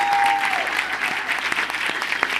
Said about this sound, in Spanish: Fuertes aplausos para ellas.